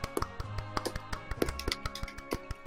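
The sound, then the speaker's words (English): Soft, polite golf clapping from a few people: light, irregular claps overlapping for a few seconds, quiet and unhurried, with no voices. “Give him the golf clap, everyone.”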